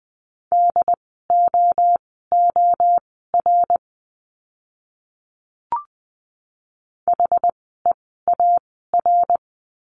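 Steady mid-pitched beeps keyed in quick dots and dashes, spelling out short Morse code words at 20 words per minute in a practice lesson on the letter U, at a brisk pace, with a brief click and pause midway before the tones resume.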